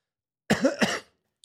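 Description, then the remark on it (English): A single loud cough with two quick harsh bursts, followed by silence and a tiny faint click at the end. “That was a timely cough.”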